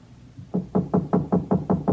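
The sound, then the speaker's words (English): Someone raps steadily on the door of a house outside town on a back road, about seven firm, evenly spaced knocks after a brief quiet moment, with no voices present and nobody answering. “But nobody answered my knock.”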